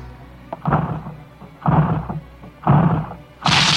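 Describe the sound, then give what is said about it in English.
Four heavy, booming blows strike a door about once a second as an officer knocks it down, each a loud thudding crash, the last one sharper and more splintering. No voices. “knock it down.”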